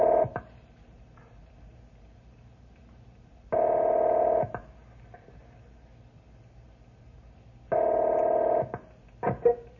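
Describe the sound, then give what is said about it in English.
Telephone dialing tones over a quiet line hum as someone calls the Forest Creek ranger station: a few brief blips, then two steady, buzzy one-second tones spaced about four seconds apart, followed by quick short beeps. No one speaks. “I'll call the ranger station at Forest Creek and see if they pick this up.”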